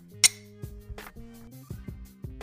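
A single bright, sharp clink of glasses tapped together in a toast at a bottle shop in Sacramento, California, followed by a soft melodic tune of stepping tones with no talking.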